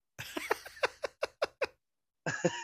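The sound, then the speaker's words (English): A female cat answers being called with a rapid run of short, high, squeaky meows, about seven in quick succession, then a brief pause and two more. Fairly clear, with no talking. “Meow. Oh, that got her attention.”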